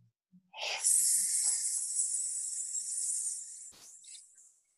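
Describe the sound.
A person imitates a snake with a long, steady hiss lasting about three seconds after a quick breath in, as a breathing exercise with a long out-breath, fairly loud, ending with a brief breathy puff.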